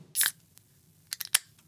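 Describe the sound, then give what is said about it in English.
A can of West Coast IPA beer cracks open with a sharp, hissing pop, followed about a second later by a quick cluster of three crisp metallic clicks. No one speaks. “shall we open our delicious beverages?”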